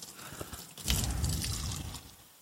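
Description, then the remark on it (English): About a third of a cup of warm water pours steadily into a bowl for about a second and a half, a splashy trickle that starts abruptly and tapers off, with no talking over it. “So I just need a 1/3 cup of water, of this warm water that I've got. And I'm going to put it into a bowl.”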